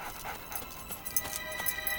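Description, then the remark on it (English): A dog in a 2005 CGI series, on an army base at night, pants in quick, breathy puffs while letting out soft, high whimpers, fairly quiet and steady for a couple of seconds with no talking. “Doggy! What are you doing on your...”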